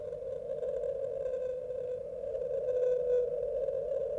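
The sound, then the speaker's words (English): A sustained, mournful low tone holds steady for several seconds. It is a 52-hertz whale song sped up ten times to about 520 hertz, droning alone with a faint hiss and slight swells in loudness. “So has he never physically bumped into another whale? Well, seems he may unlikely, have done. Right? But no one that sings at 52 hertz.”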